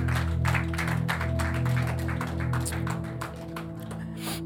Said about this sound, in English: If you believe that, would you put your hands together and just give God a clap offering?